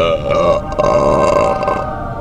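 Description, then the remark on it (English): A long, loud, sustained belch rumbles for about two seconds, with a strong buzzing, tonal quality and no talking over it. “Was that a belch?”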